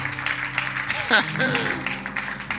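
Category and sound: crowd, audience clapping hands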